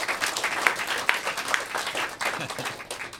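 An audience breaks into applause, a dense wash of many hands clapping steadily at close range for a few seconds with a few sharper claps standing out, and no talking.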